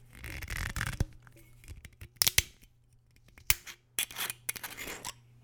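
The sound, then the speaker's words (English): The screw cap of a 1 liter bottle of Tullamore Dew whiskey, 40% alcohol by volume, is twisted open, producing a run of sharp crackling clicks and short rasping bursts with a few louder snaps. No one speaks. “Let's open this bottle.”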